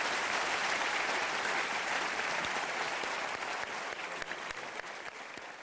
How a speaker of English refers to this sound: Thank you for that modest applause.